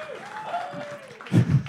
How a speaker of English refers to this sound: Yeah! Don't make the audience applaud forever.